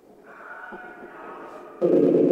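A wavering, scream-like wail rises out of hissing radio static from a Phasma spirit box during a spirit session at the Corbin Mansion, then abruptly erupts into a loud, harsh burst of noise for the final half second.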